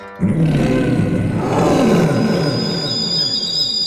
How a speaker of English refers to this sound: When the widow died, it's said the mountains echoed for weeks with the tiger's mournful roars.